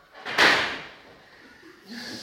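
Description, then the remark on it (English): Doors are thrown open with a single loud, sharp bang near the start, then fade into a low rumbling room tone as a faint murmur rises toward the end. “You throw those doors open.”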